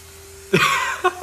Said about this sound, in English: That's them pouring a Sprite, everyone.